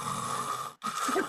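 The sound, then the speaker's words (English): A voice imitates a man snoring in a cinema with two rasping, buzzy drawn-out snores separated by a brief pause, loud, with no other sounds around it. “She says the guy next to her kind of locking around as if to say, going to tell that cunt to fucking stop snoring.”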